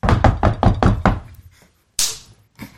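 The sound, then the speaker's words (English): Five quick, evenly spaced knocks on a door, then a short pause and a sharp hand slap like a high five, with a softer tap trailing after. No voices. “Did they actually knock and then high five?”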